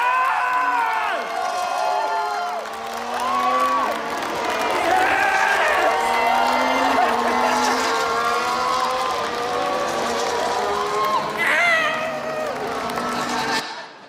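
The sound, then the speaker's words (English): A fan in head-to-toe Ferrari gear screams excitedly as their favorite driver wins his first race, amid a cheering crowd, with high, wavering shrieks and shouts riding over a dense, continuous roar of voices that stays loud for the whole stretch. “So that is me with my little sunburnt face in head to toe Ferrari gear, screaming my little head off as my favorite driver wins his first race.”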